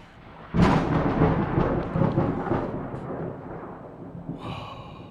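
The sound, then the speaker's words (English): A sudden loud thunder crack bursts in, then rolls and rumbles as it slowly fades over several seconds, with a faint hiss near the end and no talking. “Cue the fucking lightning.”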